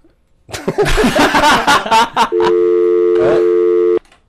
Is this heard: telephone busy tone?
yes